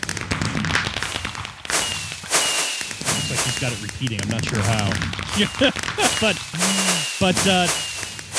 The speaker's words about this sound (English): And if we push this button. See, and it has a mix of different fireworks. And it's actually set up to fire each one.